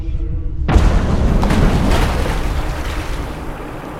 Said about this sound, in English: The crystal redirects the energy down into the water, filling the area with an inky black darkness. After a few heartbeats, the surface of the water erupts upwards in an explosion of darkness.